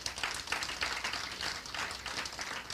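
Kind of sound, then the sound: crowd, audience round of applause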